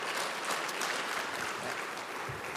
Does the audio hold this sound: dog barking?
no